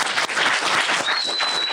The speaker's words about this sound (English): Give that a round of applause, please.